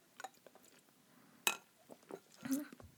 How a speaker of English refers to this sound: So in that light, let's cheers to that because that was a damn great feeling and realization when you know your worth, baby girls. So cheers.